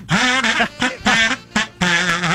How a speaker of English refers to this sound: That is incredibly loud. I will kazoo no tune written since 1945. That just has that old-timey sound.